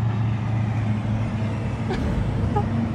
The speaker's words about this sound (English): Okay, more trucks.